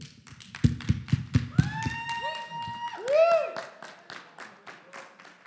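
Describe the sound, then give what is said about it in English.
A crowd at an evening gathering claps to honor people, a steady patter of sharp hand claps, with a few rising whoops and cheers breaking through in the middle before the clapping continues. “we're going to just clap for you, okay?”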